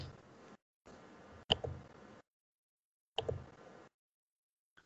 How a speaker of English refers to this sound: I hear you clicking around. What are you doing? I'm trying to fix my audio.